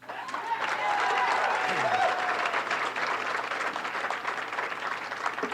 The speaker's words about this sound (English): Let's hold down the applause. Thank you. I appreciate it, but let's get through this.